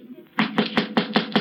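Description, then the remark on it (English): Six quick, evenly spaced knocks on a door, sharp and fairly loud, rapping in a steady rhythm after a brief quiet start, with no voices. “Did somebody knock? No, but they're going to.”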